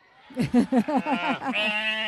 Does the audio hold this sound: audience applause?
no